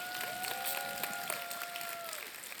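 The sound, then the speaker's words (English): An audience claps its hands in a dense, steady wash of applause, while sustained keyboard-like tones hold underneath and slide gently in pitch. “Come on, clap your hands. Clap now.”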